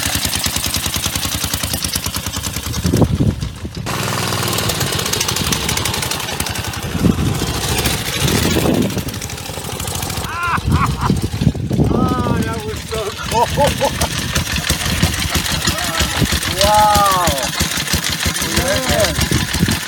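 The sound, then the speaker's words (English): A 110-year-old motorcycle engine runs loudly and steadily, with rough chugging and occasional sharper pops, while people talk over the noise throughout. “about to pop his 110-year-old cherry.”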